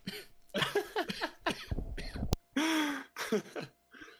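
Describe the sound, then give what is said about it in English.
A loud coughing fit: a rapid string of harsh, raspy coughs and hacking bursts with strained throaty gasps between them, tapering off into a few weaker coughs. “having a coughing fit over there”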